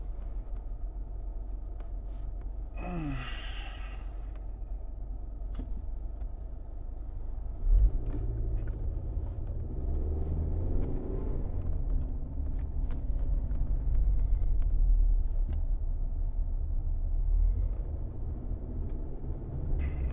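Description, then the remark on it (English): A steady road rumble from a car in heavy, backed-up traffic on highway 321 going into Lincolnton and towards Gastonia, with a brief rising whine near the start and the engine noise swelling louder partway through. No one speaks. “It's giant traffic right now going into Lincolnton and going towards Gastonia.”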